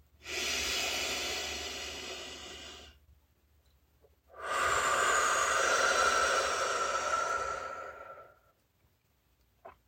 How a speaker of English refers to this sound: No matter where you are, let's now all settle in. Take a few deep breaths in through your nose and out through your mouth. And let yourself relax and feel calm.